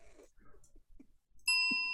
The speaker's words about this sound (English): The good thing is I've got a bell sound effect ready, just ready and waiting. So that is amazing. One good thing about doing MS Arena is that I've signed up this sound thing, Epidemic Sounds, and I can get all these sound effects.